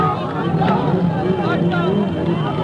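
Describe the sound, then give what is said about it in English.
A huge crowd of supporters roars in the city streets, many voices chanting "Allahu Akbar" together while racing along with a motorcade carrying Ayatollah Khomeini, a dense, continuous din with a low motor rumble underneath. “The crowd chanted, Allahu Akbar, God is great, and raced along with the motorcade trying to get a glimpse of the Ayatollah.”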